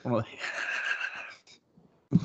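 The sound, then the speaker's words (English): A man's voice does a nasal, wavering horse whinny imitation, mimicking Bruce Dern as a horse in Once Upon a Time in Hollywood. It lasts over a second, rising then trembling and fading, followed by a brief pause and the start of more talking. “That's my Bruce Dern as a horse in Once Upon a Time in Hollywood.”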